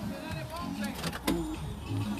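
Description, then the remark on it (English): A person locks their car door on a cloudy day: one short, sharp mechanical clunk midway through, over a low rumbling background with faint muffled voices. “Oh, look at me locking my door and not taking my keys.”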